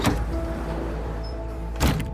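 An automatic glass door into the lobby of a federal courthouse whirs steadily as it slides open, bracketed by a soft thunk at the start and another near the end, against a low background hum.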